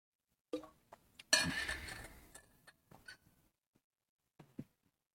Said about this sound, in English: Let me get some water.